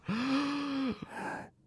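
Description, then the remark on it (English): A single voice imitates a group gasp: a sharp intake that swells into a long, breathy, voiced "ahh" lasting nearly a second, then trails off in a softer airy breath. “Gasped the entire group of snakes collectively.”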